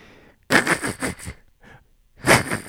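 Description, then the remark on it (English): A voice doing a Ben Affleck impression mimics an old car engine trying to start, making loud, breathy, raspy sputters in a few rough bursts separated by short pauses, with no words. “Please do Ben Affleck making the sound of a car starting and driving away.”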